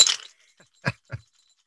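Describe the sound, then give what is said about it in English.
Six dice rattle and clatter onto a hard surface in a quick burst, followed by a few separate clacks as they tumble and settle. Fairly loud, no voices. “So I will roll this out here.”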